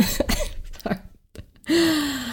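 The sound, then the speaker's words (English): A few short, muffled coughs from a person ill with COVID, as if stifled, then a brief pause and a drawn-out voiced throat sound. No speech. “I'm trying really hard not to cough at the moment.”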